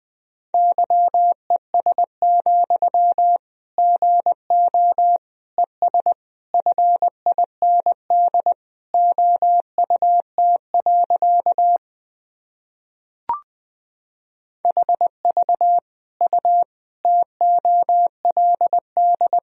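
Morse code sent at 20 words per minute: a steady mid-pitched tone keyed into quick dots and dashes, broken by one short pause with a faint click before the beeping resumes.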